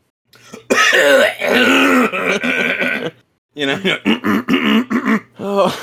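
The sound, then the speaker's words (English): A voice imitates a man in a movie theater hawking and gagging: a long, strained retching rasp followed by a series of choppy, throaty hacks, loud. “Like, he's hawking up a lung. He's gagging. He's not coughing. He's fucking gagging.”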